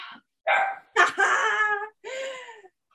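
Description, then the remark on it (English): Dogs bark and yip in three quick bursts while people work out, the middle burst longest, with short silent gaps between them and no one talking. “We got the dogs, they're ready too.”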